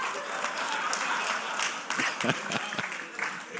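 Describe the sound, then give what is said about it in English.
A church audience breaks into steady applause, many hands clapping together in a dense, bright patter with a few sharper individual claps standing out, and some voices murmuring beneath. “We want to give you NFL, get a hand clap.”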